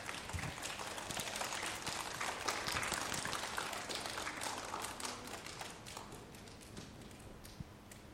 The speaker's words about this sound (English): Okay, let's give those students a round of applause.